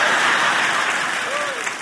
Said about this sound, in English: One good parent clapped when I said that.